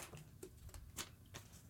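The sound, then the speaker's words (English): Quiet scratching of a pen as someone writes notes on a paper pad, a few short strokes and scribbles in quick succession, with no talking. “I'm writing this down so that we remember.”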